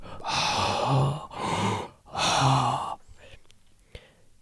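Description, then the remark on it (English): Someone imitates heavy, raspy breathing: three loud, drawn-out rasping breaths in a row, followed by near silence with a couple of faint clicks. “And you should have done some heavy breathing in there.”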